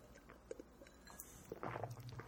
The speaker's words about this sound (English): Okay, let's take a sip. I don't know about you guys, but I'm going to take a sip here of some tea. Bear with me.